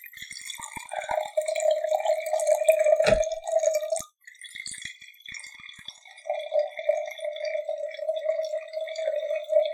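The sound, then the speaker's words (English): A 2012 wine pours into a glass, a steady gurgling trickle that breaks off briefly around the middle, then resumes for a second, longer stream. “Clean pour, clean pour.”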